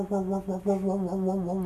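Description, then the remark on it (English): A voice hums a single steady, low note that pulses and wobbles in loudness every few tenths of a second, imitating the swirling tremolo of a rotating Leslie speaker used with a B3 organ. “So the Leslie speaker turns and you play a note and it goes,”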